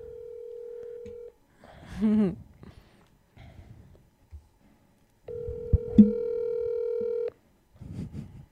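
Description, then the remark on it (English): An outgoing phone call rings out over a speakerphone: two long, steady electronic ringback tones separated by a pause, with brief muffled voices and small handling noises in between. “if we can get Joe Buck on the phone to confirm what happened with the trash can story”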